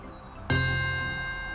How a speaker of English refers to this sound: All right, now places! Begin once the City Hall's bells ring.